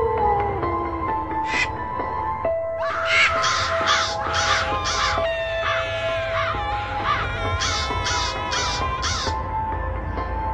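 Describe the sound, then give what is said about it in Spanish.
A crow caws over and over, a rapid series of harsh, rasping calls, set against a low, steady droning hum with no voices. “Historias del más allá, en la voz de un cuervo.”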